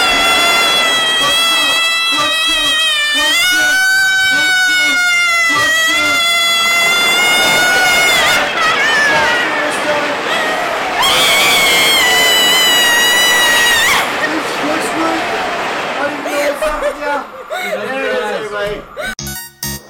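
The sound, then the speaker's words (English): A loud, continuous scream of several voices on a roller coaster, rising and falling in pitch, held almost without pause for the full twenty seconds, with a rumbling, clattering ride underneath that fades toward the end. “That is a 20-second sustained scream. Yeah, that from was a roller coaster.”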